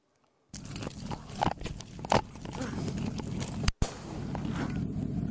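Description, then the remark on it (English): A taser crackles continuously for several seconds, a loud, rapid, harsh clicking with sharper bursts, the trigger held down without pause, briefly cutting out near the end before resuming. “You can hear this taser continuing to go off. That's because he's holding, he's depressing the trigger down.”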